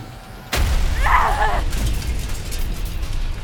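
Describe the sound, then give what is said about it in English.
A sudden, loud crash as two spaceships collide and a hull snaps, then rolls into a sustained roar of cascading explosions from both ships, with a brief metallic groan rising through the rumble. No voices are heard. “The collision snaps the hull, and both ships begin a cascading set of explosions.”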